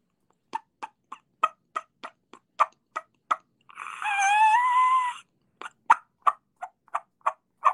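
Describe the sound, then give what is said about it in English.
A diaphragm call imitating a turkey hen's pit and squeal, the sound before the mating squeal: a steady run of sharp, evenly spaced pits, then a loud wavering squeal lasting over a second, then more quick pits. No talking. “But back to real squeal, they'll pit and squeal. It's like, I'll do it with a diaphragm.”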